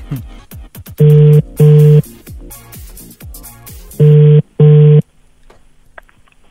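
A phone ringback tone sounds in two double-ring bursts, each pair of short, loud buzzing rings followed by a pause, over faint background clatter with no one talking.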